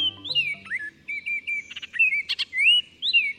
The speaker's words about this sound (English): Songbirds like this Baltimore Oriole thrive on a steady diet of scrumptious caterpillars that are often found on trees lining city sidewalks.